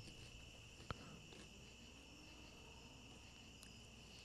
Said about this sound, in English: Is that it? I was wondering how long the crickets were going to go on for.